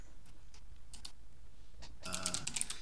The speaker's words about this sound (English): I can hear you furiously typing now. I am absolutely furiously googling that.